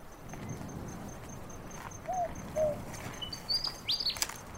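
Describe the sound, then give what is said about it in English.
A willy wagtail sings at night, a short series of bright, whistled chirps and rising notes over a steady outdoor background hiss with a faint high-pitched insect-like tone running throughout. “That's a willy wagtail, not a night parrot.”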